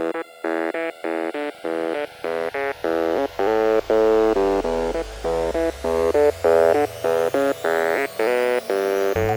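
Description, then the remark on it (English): Loud instrumental intro music, a band of drums, keyboards, guitar and bass, with punchy, rhythmic chord stabs in a bright, buzzy tone over a sliding bass line. No voices. “wrote, produced, recorded, played drums and keyboards with the help of … on guitar and … on bass of the music that you're about to hear.”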